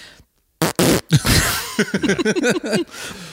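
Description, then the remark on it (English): After a brief silence, a man in an audience blows a loud, sputtering fart noise with his mouth as a server bends over, a wet raspberry that stutters on in choppy voiced bursts for a couple of seconds. “And I go, "I'm sorry, did somebody just make a fart noise with their mouths?"”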